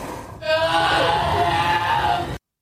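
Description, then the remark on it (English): A harsh, piercing movie scream sound effect bursts in loud, holding steady for about two seconds with a strained, tonal edge before cutting off abruptly into silence. “that appeared to be the scream from Annihilation, which is really awful”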